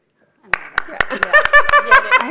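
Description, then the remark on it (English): Steady rhythmic clapping, about four sharp claps per second, starts after a brief silence and continues while voices laugh and call out over it. “Our hands might get sore from the clapping.”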